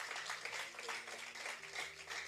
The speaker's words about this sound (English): If you want to clap, clap for the Lord. We are just reading scriptures.